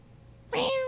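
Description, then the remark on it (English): A pet cat named Nathan lets out a single loud meow after a brief quiet pause, the call holding steady and slightly drawn out until the end, with a chirping quality. “Can you guys hear the chirping when he goes like... Hi. Hi. Hi. Meow. Meow.”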